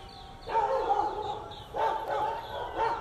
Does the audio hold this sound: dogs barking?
yes